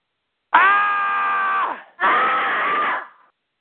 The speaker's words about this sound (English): That was just a yell.